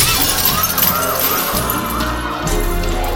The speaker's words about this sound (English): One of Vork's alien soldiers crashed through the front window of the restaurant.